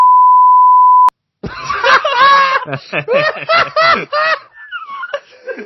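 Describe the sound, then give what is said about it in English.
A steady, loud censor bleep holds a single pitch for about a second and cuts off sharply, followed after a short silence by people laughing and exclaiming excitedly. “So I need you to beep the name I just said, or just like.”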